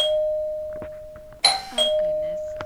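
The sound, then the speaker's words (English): A doorbell chime rings out, a steady bright tone that lingers while two sharper strikes land in quick succession partway through, then fades slowly with no one speaking. “The door, Mom.”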